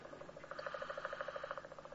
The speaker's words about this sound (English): That, my friends, is a haddock. Don't blame me. British Museum recorded that, and that is a haddock.